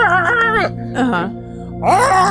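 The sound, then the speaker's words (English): Someone imitates a dolphin with their voice: three bursts of high, warbling squeals with sweeping pitch bends, separated by short pauses, fairly loud and with no talking. “And they're like, no, that means I love you in dolphin.”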